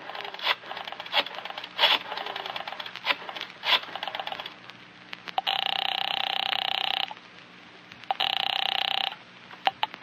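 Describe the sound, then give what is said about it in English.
At 10 o'clock, a phone is dialed with a run of quick clicks, then a loud ring sounds twice in steady, buzzing bursts separated by a short pause, with no one speaking. “At 10 o'clock, you pick up the phone again.”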